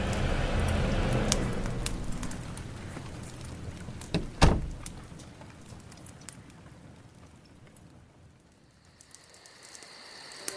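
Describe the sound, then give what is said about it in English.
A door shuts with one solid thud midway through, set against a steady hiss of pattering rain that gradually fades toward quiet near the end. “He left to get the bottle, but just before he closed the door, he heard her again.”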